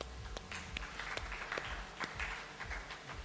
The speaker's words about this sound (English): How many of you, now same people that just applauded, how many, you were so financially set to have that child?